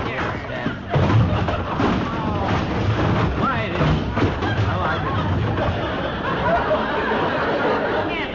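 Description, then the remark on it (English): A long, clattering avalanche of packages tumbling out of a car's back seat as the car door is opened, a dense jumble of thuds and bumps that starts abruptly and keeps crashing down for several seconds. “Don't open that car door because that back seat's package is tighter than... No, don't. Oh. Packages are...”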